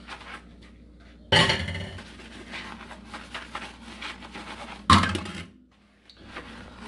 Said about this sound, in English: I'm washing dishes. I just get some soap. Make sure it's clean. I wash the dishes. I wash all of them, then I rinse them.